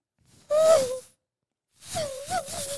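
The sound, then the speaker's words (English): A voice imitates a car racing past: a brief, loud engine-like hum that dips in pitch, then after a short pause a longer, wavering buzzing drone. “Wait, do a car driving by like fast.”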